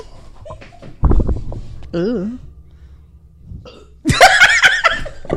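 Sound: burp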